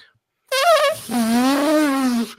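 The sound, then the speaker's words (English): A person imitates an elephant's trumpet with the voice, unrehearsed, in a challenge rated on a scale of 1 to 10: a short, high, wavering blast followed by a longer, lower, buzzy call with a slight wobble, loud and alone. “do we have to actually act like an elephant, or is it just the noise?”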